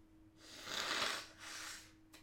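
Someone blows their nose in two breathy, hissing blasts, the first longer and louder, the second slightly softer, with no talking over it.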